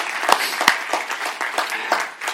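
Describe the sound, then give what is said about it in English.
An audience breaks into steady clapping, a dense wash of many hands with a few sharper claps standing out, sustained at a fairly even loudness throughout with no voices on top. “You're going to clap, clap.”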